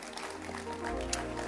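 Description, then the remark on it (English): Steady applause from many hands after a prayer at a Tuesday evening church service, a dense, continuous patter of claps at an even, moderate loudness throughout the brief moment, with a low hum underneath. “Or you can clap your hands at home.”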